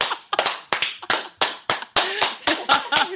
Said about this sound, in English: Slow clap. Slow clap.